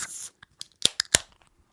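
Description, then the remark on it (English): Beer cans being cracked open: a short fizzy hiss, then a quick run of sharp metallic snaps and pops, fairly crisp and bright, with no one talking. “First of all, we're gonna crack these berries.”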